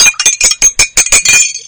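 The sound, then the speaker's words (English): Rapid, bright clinking of ceramic tea cups, about eight sharp taps in quick succession, fairly loud, ending in a short ringing rattle. “I'm trying to between the clinking of teas.”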